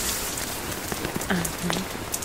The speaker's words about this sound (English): I want you to hear the lovely pitter-patters of the rain, but I don't want your lovely little ears to be subjected to the howling winds, the harsh howling winds.